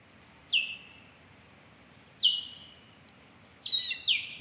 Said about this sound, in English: Take a listen to an osprey call.